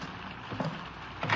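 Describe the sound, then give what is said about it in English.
Steady rain hisses evenly throughout, a dense wash of noise with two brief, slightly louder surges partway through. No voices are heard. “Don't let all the rain in.”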